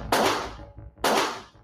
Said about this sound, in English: A man had creeped past her holding what she thought might be a gun. Moments later, gunshots rang out.